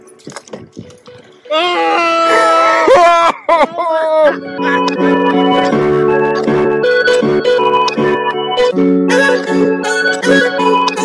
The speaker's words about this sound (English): Oh, it's a pig!